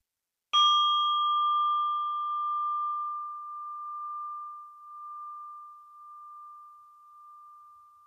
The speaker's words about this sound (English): And I'm inviting the bell to end this practice.